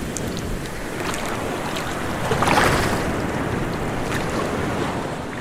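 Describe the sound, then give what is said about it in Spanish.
Rough, churning sea with waves crashing and surging continuously, a louder wave breaking midway, all under a steady rush of wind buffeting the microphone. “Tuvimos solo tiempo para desatar nuestras balsas y lanzarlas al agitado mar, azotado por las olas.”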